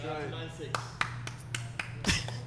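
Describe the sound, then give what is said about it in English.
A few thin, feeble hand claps land unevenly after a brief bit of speech, each a quick dry smack with little force, over a steady low hum. “That's the most pitiful clap in the that's world.”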